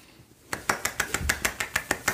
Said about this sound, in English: I thought that this was so cool. The one hand clap because I have such control on my wrist.